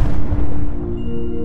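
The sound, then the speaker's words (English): A deep, loud explosion boom representing the Big Bang, the birth of the universe, with heavy low rumble that rolls on and slowly fades, its brighter crackle dying away while a faint steady hum lingers underneath. “That's right, it's the Big Bang.”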